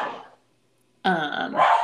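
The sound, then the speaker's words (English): A dog barks loudly, two sharp, tonal barks in quick succession after a brief silence, with no talking. “Well, my dogs are going to say hello. They're going to be part of this episode.”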